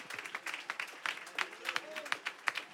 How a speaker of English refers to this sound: Come on, let's give the Lord a hand clap of praise if you're thankful for that mercy tonight.